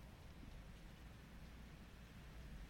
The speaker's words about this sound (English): I can hear the rain through that. I wonder if the listeners will be able to hear. So nice.